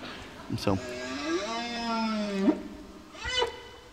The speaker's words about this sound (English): So these are whales. Maybe they're communicating with one another about where some plankton are.